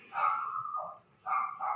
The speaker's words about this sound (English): Oh, sorry, dog. Puppies.